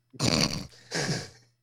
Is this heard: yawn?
yes